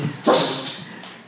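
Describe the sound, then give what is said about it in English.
A dog named Chewie gives a single sharp bark because he hears somebody. The bark rings out loudly and then fades, with faint background noise lingering afterward. “So this is a chewy barking over there.”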